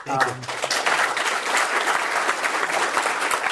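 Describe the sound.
An audience claps steadily and densely for several seconds, a loud, even wash of many hands with a brief voice at the very start.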